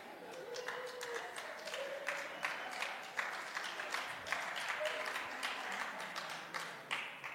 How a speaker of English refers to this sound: I don't know why some people are clapping, because I know they're often late.